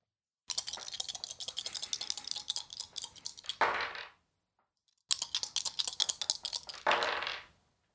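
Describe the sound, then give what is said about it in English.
A handful of dice rattles and clatters in two separate bursts, each a dense run of sharp clicks ending in a brief tumbling rush, with a short silence between. Fairly loud, no voices. All the dice, sneak attack dice and a D8, are rolled again for a critical hit. “It's a critical, so you roll all the dice again.”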